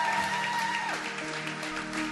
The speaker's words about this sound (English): Clap for them as they go. Clap for them. Clap for them. Clap for them. Clap for them. Clap for them.